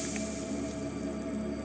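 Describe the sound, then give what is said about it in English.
Fire powder poured slowly from a bag cut open with a knife, along lines drawn within a magic circle: a soft, steady hiss that runs unbroken for a couple of seconds at low volume, with no voices. “Purlek, Xiaol, he said, as he poured the contents out slowly along the lines he had drawn.”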